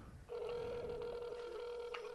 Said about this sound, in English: I don't like how his phone rings.